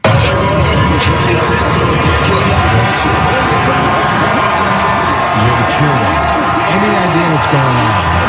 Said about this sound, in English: All right, it's just crowd and crowd noise. This is obviously from the Chiefs parade from yesterday through Kansas City.